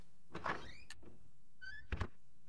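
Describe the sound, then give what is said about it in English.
A door slides open with a short rumbling scrape and a rising squeak, then a second squeaky slide ending in a soft thunk as it pulls a necklace left by the door inside, with no one talking. “It pulls inside the door.”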